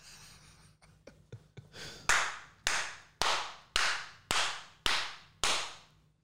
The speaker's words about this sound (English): I think we're at like 7 claps now. Yeah. I think we're at 7 claps.